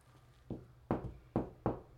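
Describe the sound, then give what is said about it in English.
Five loud knocks on a door in a steady, slightly uneven rhythm, each a sharp thud, with a low hum underneath and no voices. “he might be knocking at your door.”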